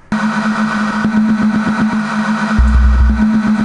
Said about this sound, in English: But here's a song that I was just like, I was frying after acid and I made this song. But listen to this and let me know what you think about it.